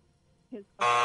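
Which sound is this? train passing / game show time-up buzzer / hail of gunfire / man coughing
game show time-up buzzer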